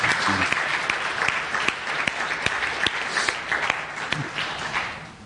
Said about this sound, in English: Can we just give God one more hand of applause for what he's doing in these lives?